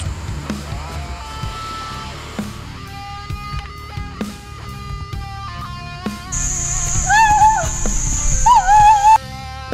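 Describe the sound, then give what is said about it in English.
A puppy whimpers in several high, wavering whines that rise and fall, mostly in the latter half, over a busy background with a steady high-pitched tone. “Puppy!”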